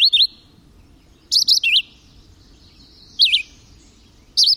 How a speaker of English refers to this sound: But the North American record holder may well be the red-eyed vireo. One such vireo delivered its short song over 22,000 times in 10 hours.